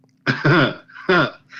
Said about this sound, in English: You are not. You are not clearing your throat.